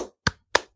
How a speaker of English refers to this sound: Wait, can you hear me clapping or is my mic? Yes, I can hear you clapping.